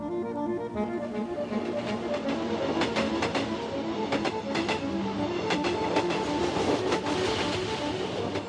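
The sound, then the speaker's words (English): A train on its way back to Spain rolls steadily along the rails with a continuous rumble, its wheels clacking in an irregular rhythm over the track joints, with no voices. “Imagine Paddy's train thoughts on the way back to Spain.”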